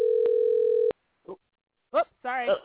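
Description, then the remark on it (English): A single steady telephone ringback tone from an outgoing call to a guest hums for just under a second, then cuts off abruptly, followed by a pause and brief bits of a person talking. “Phone's ringing.”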